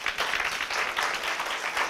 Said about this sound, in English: Yeah, you can clap your hands.